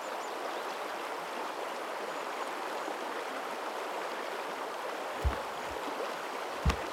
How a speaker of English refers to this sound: Once you cross, you continue your walk by the river, the path following its natural flow. You hear playful splashing and observe the young nixies floating and playing in the current.